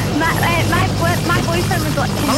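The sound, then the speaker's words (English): A steady, loud helicopter rotor drone, a constant low rumble with no pauses, while muffled voices talk over it; the helicopter is flying over Preston. “I'm just on a helicopter. I'm just steering this over Preston.”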